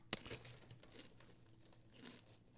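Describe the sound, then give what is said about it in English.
Crunching of someone chewing crisp spicy chips, opening with a sharp crack and followed by a few softer, irregular crunchy bites, fairly quiet and with no talking. “Are you just chewing? Is that what's happening right now?”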